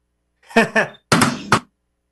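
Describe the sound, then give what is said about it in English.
A drum rimshot drummed on a desk: two quick, punchy booming beats followed by a short hissing cymbal-like crash, fairly loud, with nothing else around it. “That has to be your drums. As I knock everything off the damn desk doing that, but still.”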